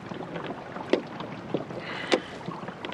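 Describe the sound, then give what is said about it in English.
Oars dip and splash in a steady rhythm as a small boat is rowed round to a houseboat, three distinct strokes over a soft wash of water and light wind, with no voices. “Look, sit still. I'll row you round there.”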